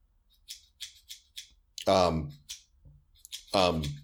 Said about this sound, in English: That sounds like scissors. Like, that is scissors.